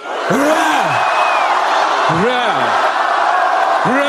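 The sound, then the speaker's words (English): A huge crowd at a rally on Red Square, mostly bussed in, roars and cheers without pause, with three loud, drawn-out shouts rising and falling above the steady din, spaced a couple of seconds apart. “Leading in cheers a crowd that had mostly been bussed in to try to rally a nation now in a war that Russians can no longer ignore.”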